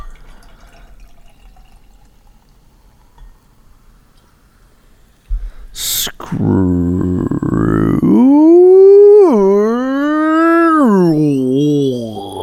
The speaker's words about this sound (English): Is that just a yawn? Is that just just a yawn.